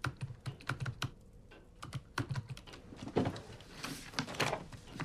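Rapid typing on a computer keyboard, a steady stream of crisp key clicks in uneven bursts with brief pauses, moderately loud, with no one speaking.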